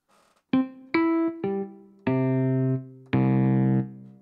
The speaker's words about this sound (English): The reverb is really nice. I'll start on the right-hand side with the reverb. Okay. this is how it loads up.